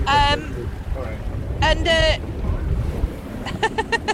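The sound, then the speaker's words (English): Steady wind rumbles and buffets throughout aboard a sailboat, a constant low roar, while voices break in briefly at a few moments over it. “Okay, it's quite windy today.”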